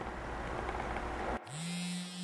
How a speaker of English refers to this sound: You're jolted awake by the harsh buzzing of the phone on your nightstand.